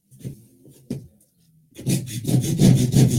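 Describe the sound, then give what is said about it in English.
A few soft, low knocks and scrapes, then a saw starts cutting through wood at a marked line in steady, rapid back-and-forth strokes, loud and rasping, about six strokes in quick rhythm. “On the more length side of the cut.”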